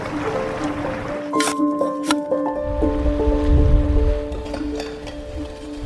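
Ocean waves crash and wash with a rushing roar of wind that swells in the middle, heard beneath sustained musical tones, with no one speaking, on the Scottish island of Islay.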